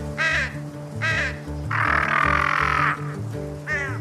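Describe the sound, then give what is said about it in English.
Harsh, raspy bird calls: two short caws, then a longer drawn-out rasp and another short call, over a steady low rhythmic backing of tones. “Did you hear that? It was saying it may rain soon.”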